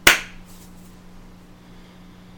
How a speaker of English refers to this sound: I'm going to actually do the clap this time. Okay. 3, 2, 1.